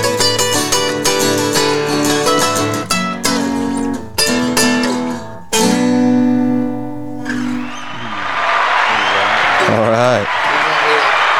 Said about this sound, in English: He can't hear the applause, but the soundboard had some applause for you. It's a good audience. Great crowd.